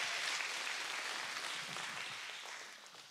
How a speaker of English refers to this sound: Y'all give her a great big round of applause.